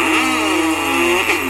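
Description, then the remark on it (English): A loud race car engine revs steadily, its pitch holding high with a brief rise near the end, filling the whole short moment with no talking over it. “How about race car drivers?”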